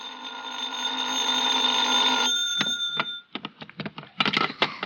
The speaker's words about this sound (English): I went back to my hotel and hit the sack, and I must confess I slept later than usual the next morning. I was still in bed when the phone rang.